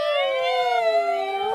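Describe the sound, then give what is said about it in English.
Several voices wail together in a sustained, slowly gliding tone, imitating an ambulance siren loudly and steadily for a couple of seconds. “Ambulance, louder.”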